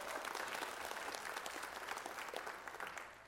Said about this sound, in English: That deserves a hand clap, I'll tell you.